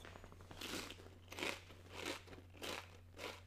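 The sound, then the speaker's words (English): Crunching into the microphone of a folded Flavor Meal Ragin' Ranch tortilla chip being chewed, with five sharp, brittle bursts spaced at a steady chewing rhythm over a faint low hum, and no talking. “Real crunchy. Kind of like a crunch in the mic.”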